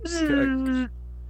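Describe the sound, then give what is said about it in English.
A voice imitates a party blower horn, the little birthday horn you blow into, with one buzzy, sustained note of just under a second. It starts with a breathy burst, then the pitch slides slightly downward before cutting off. “Like, what are those little birthday horns?”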